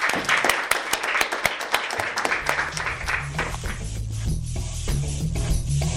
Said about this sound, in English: Oh, it's been so great. Well done. Like, congratulations. Like, round of applause.